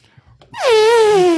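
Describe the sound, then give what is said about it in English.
A voice mimics an elephant's trumpet: one loud, brassy blare that leaps in and slides steadily downward in pitch, held for about a second after a few soft breathy sounds. “Oh, I can't make an elephant noise.”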